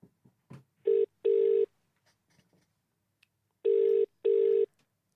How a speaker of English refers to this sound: Now, I think we should go and cut to our phone call